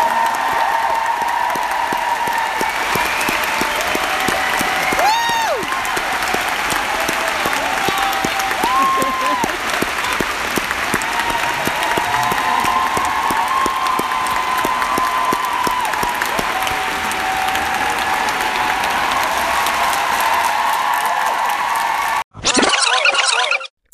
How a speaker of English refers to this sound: Well, thank you so much to everyone that asked the question, and to everyone for coming. And let's just give a massive round of applause.